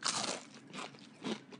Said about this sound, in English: I love kettle chips when they're folded over. Yeah. Well, these are rolled potato chips. Mm-hmm. So you get just that real thick potato chip crunch. I love crunch.